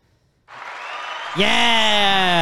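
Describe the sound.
A burst of applause starts abruptly and keeps going, then a loud, sustained cheering voice rises over the clapping, making the moment enthusiastic.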